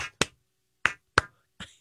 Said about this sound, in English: Yep. Just applaud, guys.